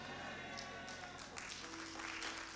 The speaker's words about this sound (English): That looks like you are clapping.